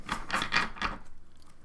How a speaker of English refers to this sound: Well, these cards are sure good and shuffled.